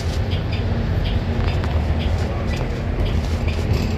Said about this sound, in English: Pretty bleak today on this bus.